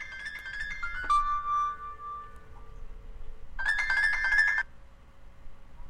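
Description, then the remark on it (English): A phone ringtone plays clear, a bright electronic melody that fades into a held tone, then after a short pause a second burst of the tune rings out. “Now my phone's going to ring.”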